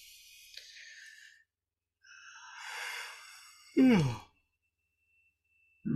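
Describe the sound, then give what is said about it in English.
A person yawns: a long, breathy drawn-in breath swelling and fading, then a loud voiced groan that drops in pitch and stops abruptly, followed by near silence. “Sorry, I'm yawning.”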